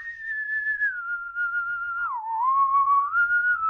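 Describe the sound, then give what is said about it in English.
A person whistles a slow, wavering tune late at night: one continuous clear tone that glides down and back up in pitch, steady and fairly loud with no talking. “Stop whistling and go to sleep.”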